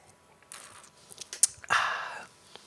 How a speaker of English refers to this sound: I just need a sip of beer. I got it already. It's already up here.